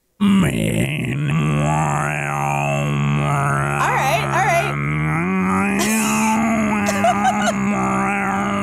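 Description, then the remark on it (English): A voice imitates Tuvan throat singing in a didgeridoo-like style: a loud, steady low drone held for about eight seconds, with whistly overtones sliding up and down above it in a wavering melody. “There's my didgeridoo version of Tuvan throat singing.”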